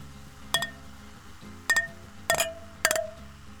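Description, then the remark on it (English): Beer glasses clink together in a New Year toast several times, bright, each tap leaving a brief ringing tone, some strikes coming in quick pairs, with no one talking. “Okay, I'm stopping before we break the glass.”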